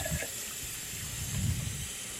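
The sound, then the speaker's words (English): Water runs steadily from a tap into a kettle, a continuous splashing rush with a hollow, deepening gurgle as it fills. No voices are heard. “Okay, have you got a kettle full of water?”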